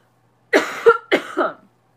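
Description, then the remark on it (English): Two forceful coughs in quick succession, each with a harsh, raspy burst and a throaty follow-through, heard alone with no talking around them. “You guys, I have a cough.”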